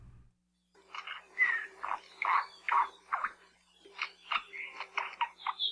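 A Koekoe honeycreeper, an endangered native bird of Maui Nui, Hawaii, gives harsh, raspy, croak-like calls in two rhythmic series of repeated notes separated by a short pause, fairly loud and alone without any talking.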